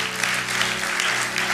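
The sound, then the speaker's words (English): A church audience gives the Lord a clap offering, a dense, steady wash of applause that holds at an even loudness throughout, with a sustained low musical tone humming underneath and no voices. “Come on, give the Lord a clap offering one more time.”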